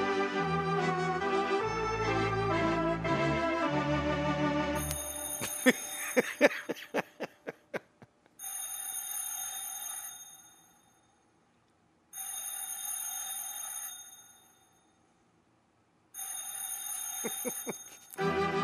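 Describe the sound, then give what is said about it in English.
Sustained organ chords give way to a rapid series of bright bell strikes, followed by three long, shrill bell-ringing bursts separated by short silences. “Complete with the bell.”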